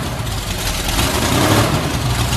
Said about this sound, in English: He's firing up the Daytona.